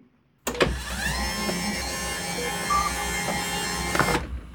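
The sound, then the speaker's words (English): A motorized hospital bed hums as it adjusts: a steady electric motor whine runs for about four seconds, starting and stopping with a soft mechanical clunk. No voices. “Hey, I know that sound. A motorized bed.”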